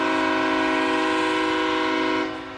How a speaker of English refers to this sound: Dave, I know you love that train whistle.